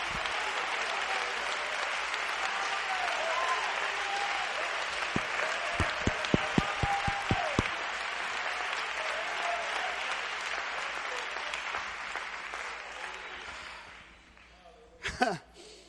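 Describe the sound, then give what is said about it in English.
A church audience claps their hands unto the Lord and cheers during a sermon, a dense, sustained wash of applause with a run of sharp, rhythmic loud claps partway through, then the noise fades toward the end. “Come on, just clap your hands unto the Lord, and out of your mouth just say, I receive it from you, Lord.”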